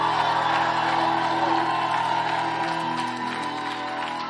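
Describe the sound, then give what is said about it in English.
A large church audience shouts and cheers together on a Sunday in a loud, sustained roar, voices whooping and yelling over a dense wash of sound that eases slightly toward the end. “Are you happy to be in church on Swollen Sunday? Oh, I can't hear you.”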